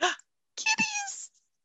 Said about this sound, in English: Kitties.